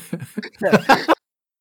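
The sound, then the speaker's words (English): A person coughs and hacks while going back to breathing air, in a quick series of rough, throaty bursts, a few small ones building to three louder, harsher hacks, then it stops abruptly into silence. “Transitioning back into, like, breathing air is a weird coughing and hacking from ….”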